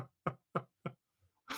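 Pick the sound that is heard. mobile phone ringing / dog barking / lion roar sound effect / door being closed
door being closed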